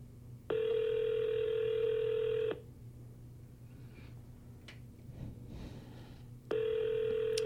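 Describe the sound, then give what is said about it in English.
A phone call placed to a telephone number ringing out: a steady electronic ring tone lasts about two seconds, followed by a few seconds of quiet line hiss, then the next ring begins. No one speaks. “Okay, let's try this number.”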